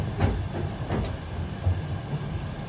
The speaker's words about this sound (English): So I'm on the train. Still? It's a long train journey over the other side of the country.